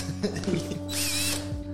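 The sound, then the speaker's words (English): A small handheld electric milk frother whirs as it mixes a rum drink, a steady motor hum with a brief louder, higher-pitched burst of spinning in the middle before settling back. “Give me the frother.”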